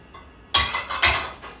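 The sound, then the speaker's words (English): Ceramic plates clink and clatter against each other as they are moved onto a table while packing to move house, with a sharp first knock followed by a second louder rattle, bright and ringing, no voices. “Well, all I'm gonna do with these plates,”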